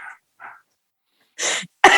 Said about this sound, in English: No, I got a cough. I'm not allowed to go in to get a PCR test. It's a long story, but I get pneumonia every goddamn winter, so I've got pneumonia.